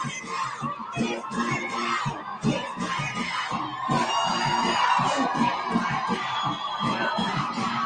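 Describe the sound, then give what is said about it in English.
A crowd of pro-Palestinian protesters yelling and shouting at a member of Congress, all at once, loud and continuous, with overlapping voices and occasional sharper cries throughout. “And they don't like me, they hate me, they're shooting me birds, yelling at me.”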